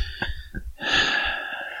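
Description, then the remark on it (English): A sneeze: a few short, sharp breaths catch and build, then a loud, hissy burst that trails off over about a second. No one speaks. “God bless you”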